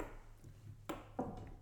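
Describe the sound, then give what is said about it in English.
A laptop stand being handled and passed over, with two sharp metallic clunks about a third of a second apart over a low background hum. “We bought this laptop stand, so when we do lives or even when we did this pitch, it was really great.”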